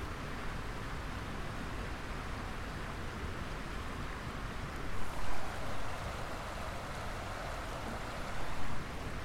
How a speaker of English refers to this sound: Just walk to the creek and look that direction. So this is Rock Creek.